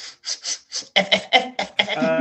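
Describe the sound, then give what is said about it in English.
A voice imitates a dog-man character sniffing an elven lady in a tabletop role-playing game: four quick, airy sniffs followed by several louder, voiced snuffling bursts in a steady rhythm, ending on a drawn-out nasal tone. “Smiles, sniffs her.”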